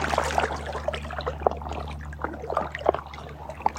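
Soft, continuous trickling water with small bright splashes and gurgles scattered throughout, gentle, over a low steady hum, with no voices.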